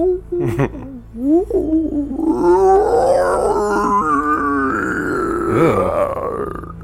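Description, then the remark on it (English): A voice imitates an otherworldly howl, a long, wavering, rising and falling cry with guttural, growling edges, sustained for several seconds. “You all leave that area, you hear this otherworldly howl in your minds.”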